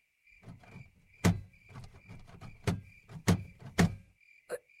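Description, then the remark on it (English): Repeated heavy thumps and rattling bangs as a stuck door is shoved and yanked, several hard impacts in an uneven rhythm with scraping and clattering between them. “The door is stuck.”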